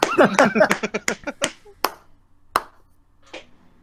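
A quick burst of a hand slapping a bare stomach, loud, then a few slower, spaced smacks tapering off into quiet.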